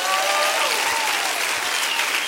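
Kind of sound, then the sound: crowd, audience clapping hands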